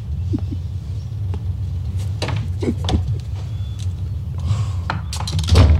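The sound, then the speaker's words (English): A door clatters shut amid a few knocking, rattling thumps over a steady low engine-like rumble, with a heavier bang near the end. “To close the door, come in.”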